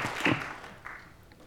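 audience hand clapping

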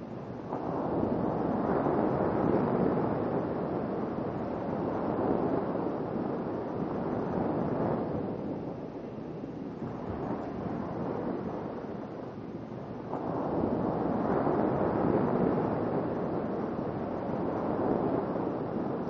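sea waves and surf

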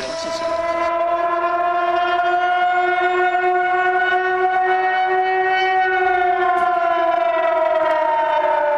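civil defense siren wailing

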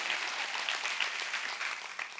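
audience clapping hands

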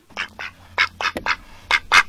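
duck quacking

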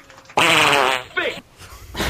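loud fart

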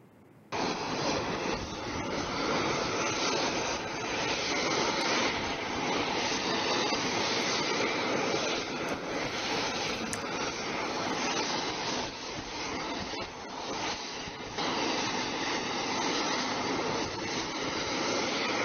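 airplane engine noise

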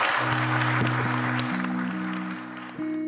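audience round of applause

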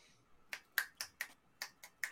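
scattered audience applause

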